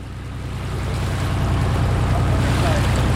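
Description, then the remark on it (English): Steady wash of water lapping around a barge-like craft moored to a dock in Portland, Maine, with a low droning hum underneath, fairly loud throughout, no voices. “The barge-like craft moored to a dock in Portland, Maine, looks like some modern version of a sternwheel paddle boat.”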